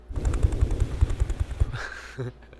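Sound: voice imitating a helicopter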